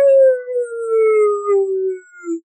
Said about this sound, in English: Our dog wants to sing it.